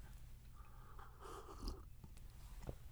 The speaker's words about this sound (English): Thank you. I just needed a quick sip. Now I'm good to go.